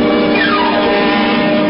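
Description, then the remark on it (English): A car engine drones steadily and fairly loud, with a rising-and-falling tonal sweep early on as the car comes around a curve from behind, its lights shining into another car; no voices. “A car had come around the curve behind us.”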